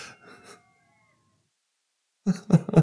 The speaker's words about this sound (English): And we have coyotes. Now you're hearing coyotes.